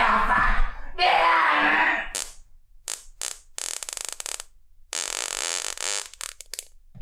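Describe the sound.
Someone imitates farts with their mouth, blowing a series of loud, raspy sputters: two rough blasts, a few short pops, then long sustained buzzing raspberries.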